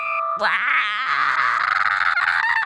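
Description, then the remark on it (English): A loud, strained, scream-like throat clearing: one sustained, raspy vocal burst lasting about two seconds, with a wavering, warbling pitch that turns gravelly toward the end. “It's a new way that I'm clearing my throat.”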